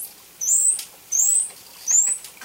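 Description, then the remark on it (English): Three high, thin dolphin whistles, the most frequently used dolphin vocalization, each a short rising sweep, repeat at an even pace with brief pauses between them. They sound clear over a faint hiss, with no voices. “here's the most frequently used dolphin vocalization, the whistle number 2 Doyle mentioned”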